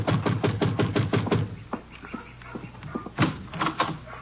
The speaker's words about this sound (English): Yeah, you better knock again.